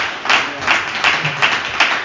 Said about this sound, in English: Let's put our hands together this morning.